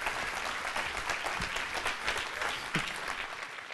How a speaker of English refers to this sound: Y'all give me a hand clap of praise this morning.